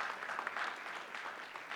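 A crowd applauding steadily, many hands clapping at once in a dense, continuous wash of sound with no pauses, fairly loud throughout.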